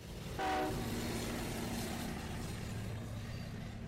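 A train rumbles along steadily with a low, continuous rolling clatter, and a short horn blast sounds near the start. No one speaks.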